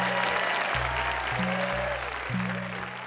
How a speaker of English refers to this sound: So before you go into the interval, can you give a huge round of applause for our four storytellers